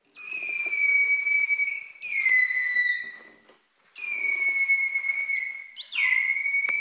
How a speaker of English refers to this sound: Making that louder call takes more energy. Holt and Noren found that when the dolphin was whistling harder and louder, its metabolic rate rose by up to 80% above normal resting levels.